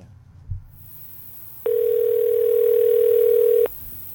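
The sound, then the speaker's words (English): A steady telephone dial tone hums for about two seconds while placing a call to Council Member Victoria Martinez of the City of Almani, a continuous unbroken pitch that starts and stops abruptly over faint background noise. “All right, I guess we'll just have the sound of dialing.”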